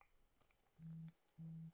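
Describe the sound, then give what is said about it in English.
Two short, low buzzing pulses from a phone notification, evenly spaced and fairly loud, like a phone vibrating, with only faint background noise between them and no talking. “Oh man, my phone's blowing up, bro. I'm sorry for these notifications.”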